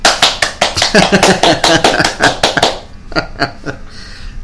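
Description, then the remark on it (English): A quick, steady run of about a dozen sharp hand claps, fairly loud, prompted by a blinking applause sign, then a short pause and a few softer, scattered claps. “Yeah, it said applause on the sign. That's blinking, you have to clap every time.”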